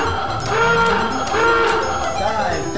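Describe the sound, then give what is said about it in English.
A loud, buzzing submarine dive klaxon, sounded as the dive alarm, blares about three times in a steady rhythm, each harsh, harmonic-rich blast swelling and bending in pitch before the next. “Chief of the watch, sound the dive alarm.”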